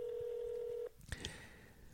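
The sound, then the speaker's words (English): A steady dial tone on a home telephone hums for nearly a second, then cuts off with a sharp click followed by a brief touch-tone dialing beep, clear with no talking. “This is a home phone.”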